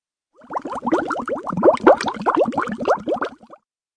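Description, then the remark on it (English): Water bubbles and gurgles up from deep in a bathtub, a dense run of quick wet plops for about three seconds, fairly loud, with no voices. “'Twas the most unusual sound that I'd ever heard. As if the tub came alive, though that sounds so absurd.”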